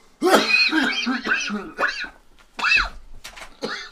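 Someone coughs several times in short, rough bursts, close to the mic, mixed with throaty vocal sounds and a brief pause between the bursts.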